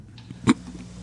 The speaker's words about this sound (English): You can hear the clock ticking.